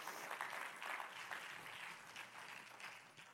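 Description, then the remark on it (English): An audience at Grace Church claps their hands to Jesus in the evening, a dense, steady wash of applause that keeps going for a few seconds, fairly soft overall and tapering slightly at the end, with no one speaking. “If you believe that God's going to do something awesome in this place, why don't you just clap your hands one more time to Jesus?”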